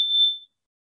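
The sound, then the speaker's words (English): A small meditation chime is rung, a single high, pure tone that rings out clearly, holding steady for a moment before fading away into silence within half a second. “I'm going to ring a chime.”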